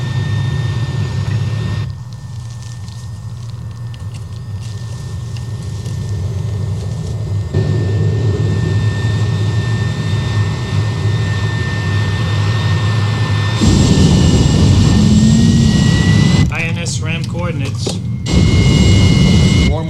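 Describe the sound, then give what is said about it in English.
A jet engine starts and runs steadily and loudly, a deep roaring rumble with a high whine riding on top, the roar shifting and swelling in intensity partway through. “5, 4, we have an engine start.”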